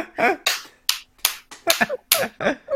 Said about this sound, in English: I'm not sure if that's clapping or what.